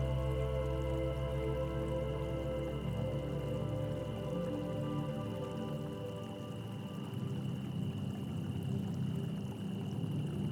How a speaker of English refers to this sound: As you walk, water ripples softly in the distance. You walk toward it, stopping at a tiny brook, bubbling her truth for anyone or anything that will listen.